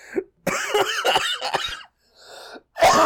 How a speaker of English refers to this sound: Quit making me cough, man. It hurts.